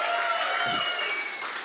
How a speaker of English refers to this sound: And then also, this has to be the first show where people have screamed and wooted for NPR.